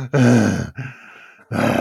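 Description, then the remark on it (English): Heavy breathing right into the microphone: two loud, groaning exhales with a rougher, airy breath between them, no words spoken. “Are you heavy breathing”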